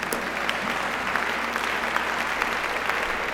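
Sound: audience applause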